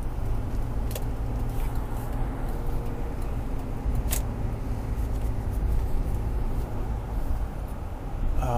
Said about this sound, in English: For shit's sake, everybody slamming their goddamn brakes.